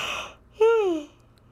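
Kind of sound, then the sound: human body sound, yawn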